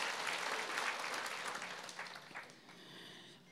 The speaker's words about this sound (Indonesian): Boleh berikan tepuk tangan bagi Tuhan.